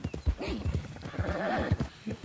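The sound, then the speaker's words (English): A horse being ridden hard gallops with rapid, rhythmic hoofbeats pounding steadily, while a high, wavering whinny rises and falls over the drumming hooves. “But yeah, so that poor horse, you are riding that horse hard.”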